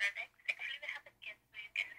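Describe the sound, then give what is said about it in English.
A phone rings with an incoming call from security, its ringtone playing as a quick run of bright, repeating electronic tones in short bursts, fairly clear. “Security calling me, man. One calling.”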